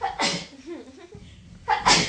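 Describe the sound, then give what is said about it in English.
Two sharp sneezes burst out about a second and a half apart, with faint murmuring voices in the quiet gap between them. “Bless you.”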